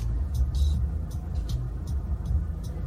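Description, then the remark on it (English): Steady low rumble of a car interior from a played-back vertical video clip, a constant deep drone that fills the whole stretch, with brief faint hissy bursts flickering above it every half second or so. “So it's in somebody's car?”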